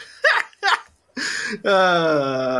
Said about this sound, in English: Turn that one down. That's there you go. More tender fart.